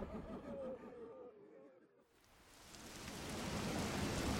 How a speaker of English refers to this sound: The sky begins to open up even more, as the rain now starts to pour down onto the cobbled tile of Benefit Street.